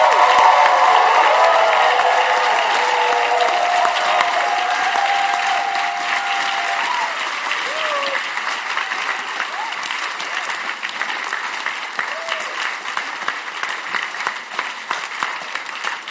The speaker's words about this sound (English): Stand to your feet. Now clap for Jesus. Your clap sounds like clapping for a man.